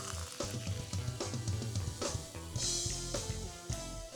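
Canada Dry ginger ale fizzes steadily after being poured into Apple Crown whisky, a dense crackling hiss of popping bubbles lasting several seconds, with no one speaking.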